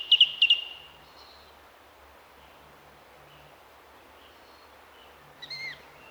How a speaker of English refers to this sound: Repetition is one of the characteristics of the song thrush.